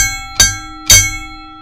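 A real bell is struck twice in quick succession, each clang loud, with bright metallic tones that keep ringing and slowly fade between and after the strikes.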